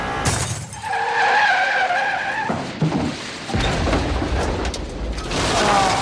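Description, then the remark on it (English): A speeding car skids out of control after its windshield is shattered, tires screeching in a loud, sustained squeal before breaking into harsh scraping and rumbling noise, intense, with no voices. “The windshield shattered to pieces, and the men lost control of the car.”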